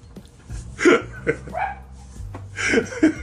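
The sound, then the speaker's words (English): A female dog lets out a handful of sharp barks in irregular bursts, moderately loud, with a steady low hum running underneath and no voices. “I got a Karen for a dog.”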